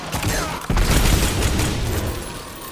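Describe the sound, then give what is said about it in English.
Heavy, booming video game hand cannon fire fills the whole stretch, loud, with a brief dip before a particularly powerful blast and a dense rumbling wash afterward, from a massive, powerful hand cannon used by an enemy hunter during a zone-capture match. “And he's got a massive, powerful hand cannon.”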